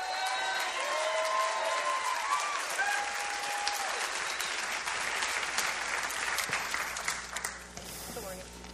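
An audience applauds steadily for several seconds for a woman as she comes up, a dense wash of clapping with a few cheers and whoops rising over it before it tapers slightly at the end.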